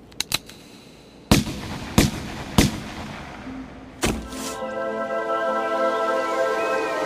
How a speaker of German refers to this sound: Peng. Ein Schuss. Ich erinnere mich an einen Schuss. What does that mean? She remembers a shot. Did the bank robber shoot at her from his hiding place?